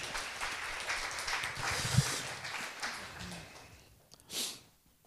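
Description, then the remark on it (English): A church audience gives the Lord a clap offering, clapping steadily for about four seconds, a dense, rustling wash of many hands, then fades out, followed by a short breathy burst. “Let's just give the Lord a clap offering as gestures come this morning.”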